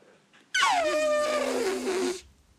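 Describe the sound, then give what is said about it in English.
A person imitates an elephant's trumpet: one loud, brassy, buzzing call lasting under two seconds, starting high and sliding steadily downward in pitch before cutting off. “It does sound like an elephant.”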